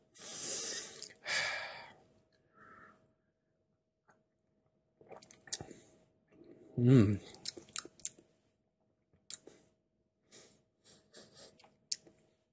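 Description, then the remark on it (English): Mouth sounds of someone sipping and tasting a whisky: a couple of sharp sniffs, a brief slurp and swallow, then scattered quiet lip smacks and tongue clicks as they taste it. “So I know you've been gagging for the past half an hour to have a sip, so go for it.”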